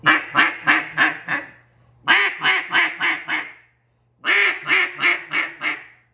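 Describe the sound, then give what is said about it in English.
A cut-down duck call, blown indoors in a house, imitates a hen mallard's cadence: three loud series of five or six raspy quacks, each run tapering off, separated by short pauses with no talking. “The other guy could be doing the fast feed in short sequence, and you're sitting there blending in with him, just hitting that little hen cadence.”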